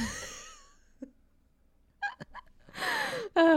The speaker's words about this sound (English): You're fine. We're just full of noises today. I know, we're like trying to cough off mic and like clear our throats and stuff like that. Choking and dying on water.